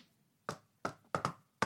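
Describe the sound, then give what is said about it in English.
Five sharp knocks on a room door, fairly loud, in an uneven pattern: two spaced knocks, a quick pair, then one last rap, reenacting someone knocking. No one speaks. “but anyway, went up to the room door and went.”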